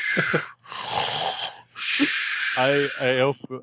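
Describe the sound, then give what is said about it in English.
A voice imitates loud, exaggerated snoring of Mr. Marlowe, lying on the bottom of a jail cell: several raspy, wheezing inhales and exhales in close succession, ending in a couple of nasal, snorting groans. “You hear the familiar snores of Mr. Marlowe from the, laying on the bottom of the cell.”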